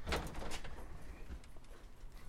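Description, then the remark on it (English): A door swings shut with a solid thump and a quieter knock right after, followed by a low room hum with no one talking. “Let me shut the door.”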